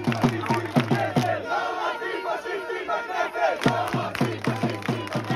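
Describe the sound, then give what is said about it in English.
A loud protest crowd in Israel chants and shouts in the street, with steady rapid drumbeats pounding at the start, fading into a swell of massed voices, then returning with the drumming. “To understand what's happening in Israel this week, you could start by watching all the protest videos.”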